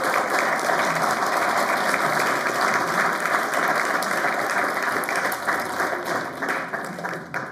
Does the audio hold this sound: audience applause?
yes